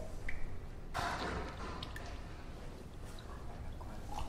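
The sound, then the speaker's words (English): Water trickles and drips steadily, with a brief louder gush near the start and a continuous wet splashing of liquid running over and spilling, no voices present; water filled into a laser system's reservoir during routine maintenance, overflowing. “So, and this is when we actually stop placing the water into the system, because it's actually overflowing.”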